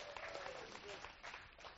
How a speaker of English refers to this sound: Yeah, you can clap. That's amazing. Yeah.